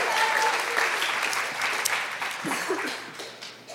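An audience claps steadily for a few seconds, a dense wash of many hands that stays loud before tapering off slightly at the end, with faint voices and a whistle briefly poking through.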